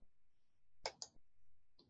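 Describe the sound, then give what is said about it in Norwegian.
Two quick, crisp mouse clicks close together, followed by a softer third click a moment later, made while selecting a medication dose to prepare and confirm in a computer system, with otherwise quiet surroundings. “Og så klikker vi på istandgjør og bekreft.”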